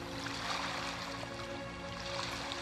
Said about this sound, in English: Beach waves crashing.